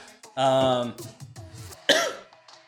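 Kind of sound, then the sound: human body sound, coughing and throat clearing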